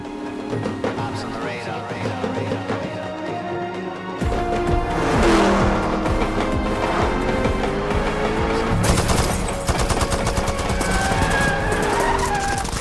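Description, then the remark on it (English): A steady hip-hop groove plays, then the Black Panther action film score swells in over it around four seconds, loud and driving, rising out of the groove and riding on top of it, mixed with screeching car and gunfire-like effects. “the action score kind of emerges up out of it, rises out of the groove that's already been established, and just kind of coexists and rides on top, sort of the same way that Black Panther is riding on top of the car, if you'll permit me.”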